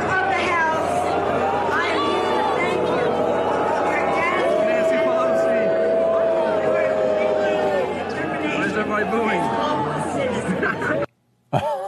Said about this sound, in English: you probably have seen this by now. Nancy Pelosi getting booed at some festival in New York. Can I wait a little bit, one more time, with the volume up?